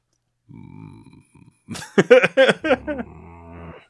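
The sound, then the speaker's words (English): A person imitates a growl: a low rumbling start, a brief pause, then a louder, rougher guttural burst that trails off, with no other talking. “See, you can always tell my growl from your growl.”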